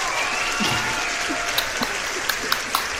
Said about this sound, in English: All right. Get the applause ready. You feel me? You ready?